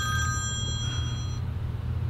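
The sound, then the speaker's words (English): A telephone rings once with an incoming call, a bright, sustained electronic tone over a steady low hum, the ring fading out after about a second and a half. No one speaks. “I got to change my, I don't know, maybe that works okay to have that ringing sound.”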